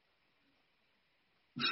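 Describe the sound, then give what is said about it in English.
After a long stretch of near silence, a toy fart gun shown in a video suddenly lets out a loud, blubbery fart blast right at the end, abrupt and cut off mid-sound. “Is TJ just showing us a video of a fart gun? An actual fart gun.”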